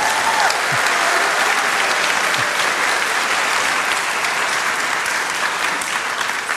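A church audience claps steadily for a speaker, a dense, sustained wash of applause that holds at an even level for several seconds without any voices breaking through.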